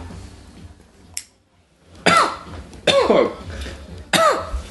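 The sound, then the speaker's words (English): Three harsh, loud coughs burst out, spaced roughly a second apart, each a rough hacking explosion that trails off, with a faint click and quiet hush before them, as a person coughs after smoking weed from a pipe. “He's coughing as well.”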